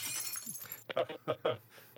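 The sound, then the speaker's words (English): Glass bottles topple and smash in a bright, crackling burst of shattering with ringing high tinkles, then the breakage dies away as a voice starts talking in short bursts. “Stop knocking over those bottles.”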